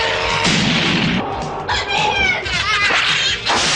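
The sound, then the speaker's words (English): A cat-like creature yowls and wails loudly, its drawn-out, wavering cries rising and falling in several long bursts with no talking. “I'm sure that thing's a cat.”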